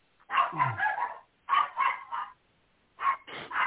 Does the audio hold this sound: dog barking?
yes